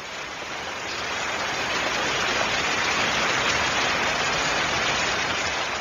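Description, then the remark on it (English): Heavy rain that has been pouring all day comes down in a steady, dense hiss that swells slightly after the first second and then holds constant, with no voices. “It's been pouring all day.”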